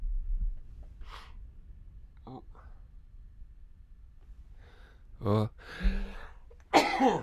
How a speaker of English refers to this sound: Excuse me, I'm about to sneeze. Excuse me.